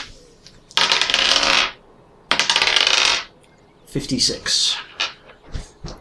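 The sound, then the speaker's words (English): Ten-sided percentage dice clatter across a hard surface in two loud rattling rolls, each about a second long, as two players each roll 2d10, followed by a voice talking briefly. “In fact, yeah, both of you two roll me 2d10s.”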